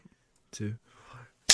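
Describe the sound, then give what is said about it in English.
A single sharp, loud hand clap, made to sync a recording at the start of a take, cracks out at the very end, following a couple of short murmured vocal sounds. “Clapping in.”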